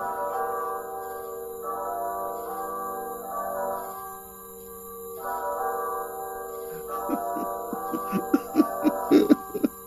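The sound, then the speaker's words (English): A church bell tolls in the distance late at night, by a cemetery, slow ringing strokes whose humming tones hang and overlap, giving way to a quicker run of sharper, brighter strikes near the end. “As Saint-Saëns weeps over the grave of his young son, a church bell tolls in the distance.”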